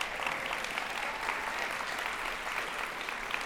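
An audience applauds steadily for a visiting group from Chico Evangelical Free Church, a dense, even wash of many hands clapping at a fairly constant loudness with no voices standing out.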